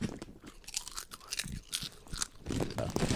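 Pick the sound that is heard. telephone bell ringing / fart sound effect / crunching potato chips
crunching potato chips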